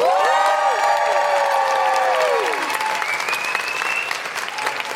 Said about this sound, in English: Please put your hands together and make incredible hooting noises